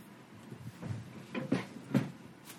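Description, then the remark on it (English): A few short, dry creaks from a desktop computer case, three distinct cracks close together near the middle, moderately loud over a quiet hum. “It sounded like it was like the computer like creaking, the desktop.”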